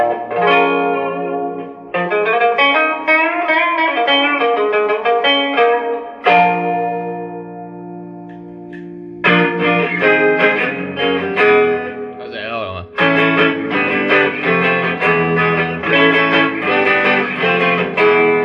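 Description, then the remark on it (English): An electric guitar played through a Champion 40 amp with its reverb effect on, strummed chords and ringing sustained notes, a long decaying chord midway, then more playing, loud with no talking. “Which means this is going to be a straight up Champion 40's actual natural sound versus the Tone Master.”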